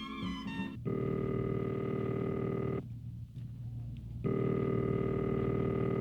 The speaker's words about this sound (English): He allowed one phone call, so I dialed the number of the only friend I knew that could possibly understand.